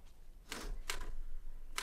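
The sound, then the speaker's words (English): Three sharp mechanical clacks of typewriter keys as a manifesto is typed out, spaced irregularly and fairly quiet, with a faint low rumble beneath and no voices. “Lady Gregory sat down at her old typewriter”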